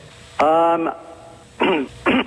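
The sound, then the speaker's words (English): A radio phone-in caller clears their throat: one longer, voiced rasp followed by two shorter, gruffer bursts, with a faint hum underneath. “Okay, listen, you got to clear your throat.”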